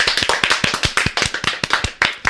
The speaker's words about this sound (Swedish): Ja, är det läge för Flashback Forevers första applåd någonsin? Jag tror det.